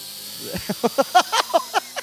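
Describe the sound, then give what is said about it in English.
A small toy helicopter flies up high, whirring with a quick series of rhythmic, pulsing bursts of buzzy mechanical noise, moderately loud, with no talking over it. “Check out this helicopter here.”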